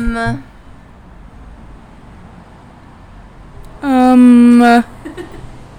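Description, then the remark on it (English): A truck passes by over a steady low road rumble, sounding a short horn note at the start and then a loud, sustained horn blast lasting about a second. “Hold on, there's a truck.”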